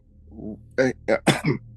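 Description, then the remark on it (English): A brief low murmur, then a quick run of four short, harsh coughs into the microphone, fairly loud, each burst sharp and separated by tiny pauses. “Sorry, I got a little cough on me.”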